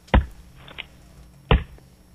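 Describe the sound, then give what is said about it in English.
Wood being chopped: two loud, sharp thwacks about a second and a half apart, with a fainter knock between them and nothing else around them. “Wow, I'm going to have to go with chopping wood.”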